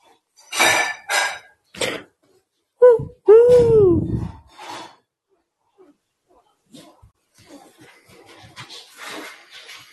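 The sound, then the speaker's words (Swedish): Puppies whine and yelp in short bursts, one drawn-out, wavering whimper standing out, followed by softer scuffling and faint rustling. “Det är dina valpar.”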